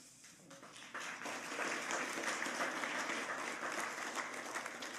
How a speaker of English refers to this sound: Oh, you clap. Oh, that's novel.